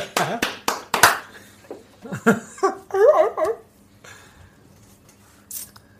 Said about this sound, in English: Here, clap again.